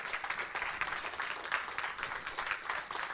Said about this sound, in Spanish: Dar un aplauso al Señor si es tan amable.